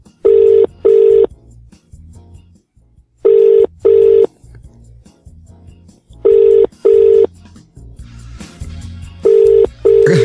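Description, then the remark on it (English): A telephone ringback tone on an outgoing call to Tribeca in Manchester: steady double rings repeating about every three seconds, fairly loud, with a faint low hum and brief rustling between rings. “Ooh, it's ringing.”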